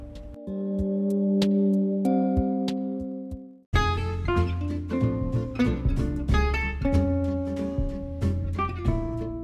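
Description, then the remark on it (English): A grandfather clock ticks steadily beneath long, ringing chime tones, fairly loud. Then an upbeat stretch of music with percussion takes over. “And next time you hear a grandfather clock bing-bonging, think of me.”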